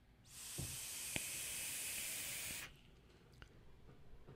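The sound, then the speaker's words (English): A steady, airy hiss rises and holds for about two seconds as a single 0.344 vape coil in a Maker RDA fires at 55 watts during a long inhale, with a couple of faint clicks, then quiet room tone. “But here we got a single coil, 0.344, 55 watts, Maker RDA.”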